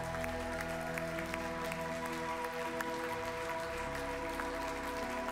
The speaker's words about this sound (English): Anybody believe that today? Can we clap our hands?